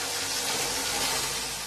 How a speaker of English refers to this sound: The farmer uses a large automatic irrigation machine, which sprays water from a hose in a high arc onto the field.